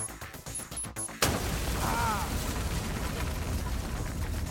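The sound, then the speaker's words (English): A sudden loud blast bursts in after a second of low rumbling as an explosive-tipped bolt is fired at a door, then a sustained roaring wash of crackling debris noise as the door disintegrates in fire and smoke, staying loud to the end. “Jean-Claude fires at the door.”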